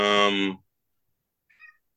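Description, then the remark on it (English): A cat going wild and wrecking the house lets out a loud, drawn-out meow lasting about half a second, followed by silence and then a faint, brief high-pitched chirp. “I'm sorry, my cat is going nuts, destroying the house right now.”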